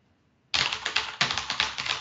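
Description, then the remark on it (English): Loud, rapid typing on a clacky computer keyboard starts abruptly after a brief silence, a dense run of sharp key strikes with no voices. “So first let's hear your keyboard.”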